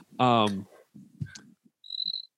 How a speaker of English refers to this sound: Was that crickets? That's Yo, was that? Yeah, that was I'm walking. Yo, was that a real cricket, or do you make a sound? No. I'll go hang with the cricket. I'm walking past the graveyard right now.